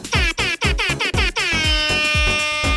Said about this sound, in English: This episode was brought to you in part by Air Horns. Air Horns can celebrate any occasion.